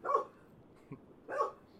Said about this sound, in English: Sorry, my dog woke up from the nap. I don't know if she scared herself, but some stuff is happening. Hey, settle down.